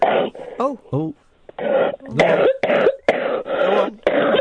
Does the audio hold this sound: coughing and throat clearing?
yes